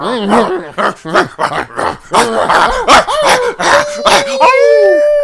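A dog barks and yips in a quick, uneven series of loud close-up bursts, finishing with a drawn-out, rising howl.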